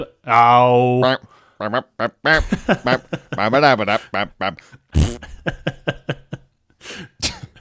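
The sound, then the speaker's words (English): A short, bouncy jingle made of quick voice-like blips, swoops and bursts, wrapping up with a brief fart sound effect at the very end. “That's the callback theme. Very good. It ends with the fart, yeah.”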